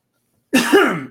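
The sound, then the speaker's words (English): A single loud cough that rolls into a raspy throat clearing, one abrupt burst lasting about half a second after silence, with no talking around it. “A little bit of a cough day.”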